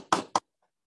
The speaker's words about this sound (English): Okay, so we start the bit. And so Cheech knocks on the door, you know.